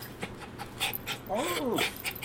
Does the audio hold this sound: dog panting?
yes